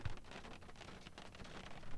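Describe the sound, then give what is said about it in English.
Steady rain falls, a dense, even hiss of countless drops pattering on a surface with slight swells in intensity, fairly soft and continuous throughout, with no voices. “We're getting some rain.”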